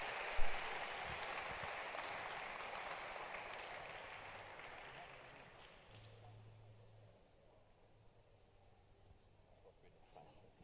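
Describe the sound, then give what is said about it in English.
A church audience claps steadily as a man comes up to give his testimony, a dense, noisy wash that gradually dies away over about six seconds, leaving quiet with faint low murmuring. “Oh, please clap as he comes up.”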